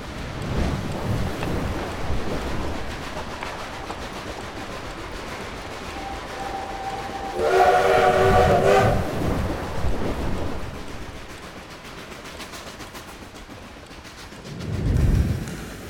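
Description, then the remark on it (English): A moving train rumbles steadily with a low, noisy roar, broken midway by a brief tonal blast like a horn or whistle, then a heavier thump of rumble near the end. No one speaks. “It's about a train and a group of people who live on that train and know of nothing else.”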